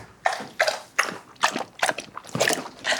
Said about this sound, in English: you're so messy when you drink water.